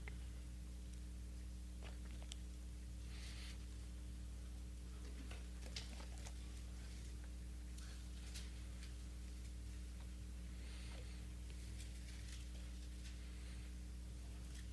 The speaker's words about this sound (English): Love to hear them pages turning. Hallelujah. All right, Hebrews chapter 1, are you there?